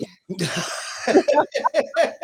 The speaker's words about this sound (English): Oh, you meant the cough.